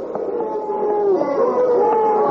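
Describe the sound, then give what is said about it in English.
A large, angry crowd in an arena boos and jeers after a boxing fight, a sustained, loud roar of many voices, with long wavering howls rising over the din and no clear words. “Oh, listen, Tom. Yeah, the citizens are angry.”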